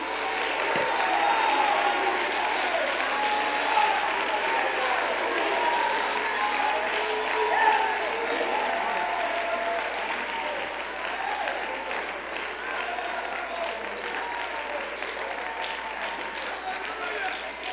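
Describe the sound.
An audience, called on by a preacher to clap their hands and shout unto him, claps and shouts together in a sustained, loud burst of applause, with cheering voices mixed into the dense wash of clapping for the whole stretch.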